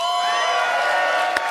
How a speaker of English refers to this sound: You guys are already rowdy and I like it. Maybe you can just cheer, do whatever you want.